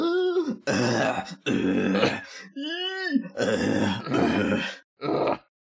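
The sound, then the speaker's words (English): A single voice acts out a string of loud, strained groans mixed with harsh, raspy coughing bursts and wheezy breaths, several short outbursts in a row with brief pauses between. “and then, like, ah, and just coughing and wheezing and just”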